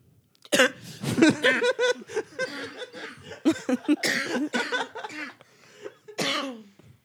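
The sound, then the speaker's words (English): A person coughs several times in loud bursts with short pauses between them, mixed with some throaty, laugh-like vocal sounds. “Why'd you cough like that?”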